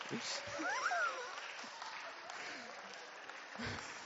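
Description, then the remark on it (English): A crowd applauds steadily for several seconds as a game contestant is knocked out of a round, a dense, even patter of many hands clapping, with a few brief whoops and cheers rising over it near the start. “Round of applause.”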